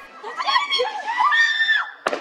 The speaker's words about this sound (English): A warning, you're about to hear the sound of gunfire. In one video, a settler accompanied by an Israeli soldier shoots a man at point-blank range.